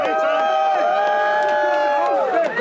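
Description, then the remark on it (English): A group of supporters cheer and shout together at a courthouse on the day of a hearing, greeting a man arriving in a prison van, a loud, steady wall of overlapping voices with sustained high-pitched yells running through the whole moment. “A group of supporters greeted him. They were cheering.”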